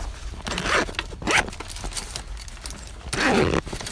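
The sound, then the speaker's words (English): A bag holding a chick, resting on the ground, is unzipped and opened to check on the chick: several quick, raspy zipper pulls in short bursts, the longest and loudest near the end, with soft rustling of fabric in between and no talking. “So we'll just quickly open up the bag and check that the chick's doing okay.”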